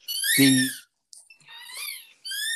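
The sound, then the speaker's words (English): A rubber squeak toy being chewed, giving several high, wheezy squeals in bursts, the first loud and harmonic-rich, followed by thinner, wavering squeaks with short gaps between them. “You got to stop chewing on your squeak toy, curmudgeon.”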